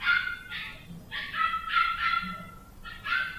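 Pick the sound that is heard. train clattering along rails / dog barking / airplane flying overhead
dog barking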